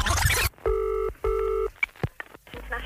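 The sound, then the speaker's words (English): A telephone number is dialed: after a brief rush of noise, two sustained electronic phone tones sound in quick succession, followed by a few sharp clicks and handset clatter, clear. “Hand me the phone, I'm going to lash out.”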